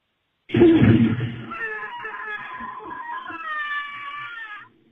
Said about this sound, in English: That was like a movie star scream or something. It is. It's from a movie. I'm trying to remember which one. I've definitely heard this scream before.